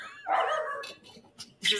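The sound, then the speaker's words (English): A female dog barks and yelps excitedly at a window, a sustained whining bark followed by a couple of sharper yips, loud. “That and my dog just losing her shit in the window.”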